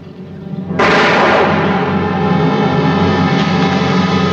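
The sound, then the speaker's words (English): A single sharp, loud classic Warner Brothers gunshot sound effect from an old studio film, the shot that hits Major Strasser, cracks in suddenly, followed by a dense, sustained ringing roar that hangs on for several seconds. No one speaks. “It's hard for me not to hear Bugs Bunny cartoons with that gunshot, that classic Warner Brothers gunshot.”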